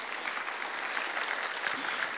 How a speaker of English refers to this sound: Can we just give them another clap, church?